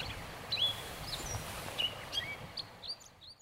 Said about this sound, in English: And if you could sort out the individual phrases this catbird is singing, you might get 70 or 80 different phrases.